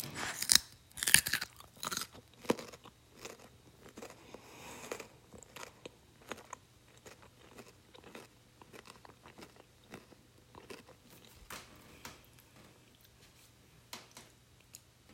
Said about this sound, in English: Got the baby carrots. Crunchy, delicious. I'm gonna finish this giant butter bread. Baby carrot. Ready? For some chewing ASMR.